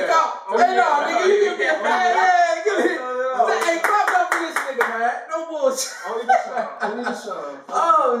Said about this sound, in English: Give clap to this nigga, man. Because he gave me compliments like that.